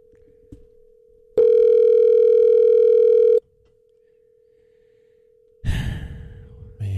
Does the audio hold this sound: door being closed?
no